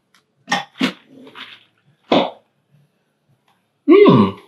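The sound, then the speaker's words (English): Several short, sharp sniffs, a quick pair followed by a softer rustle, then more spaced-out sniffs as someone inhales the aroma of wet coffee grounds from a coffee roasted on June 3, about a month old. No talking. “Let's get some dry sniffs. I'm gonna get some wet sniffs in.”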